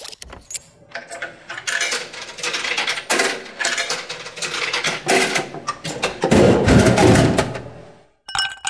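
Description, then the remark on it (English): Coins clink and rattle down through a soda vending machine's mechanism in a run of sharp metallic clicks, then a heavier rumbling clatter, a short pause and a final click, fairly loud. “Just drop a couple of coins in the soda machine and open the can.”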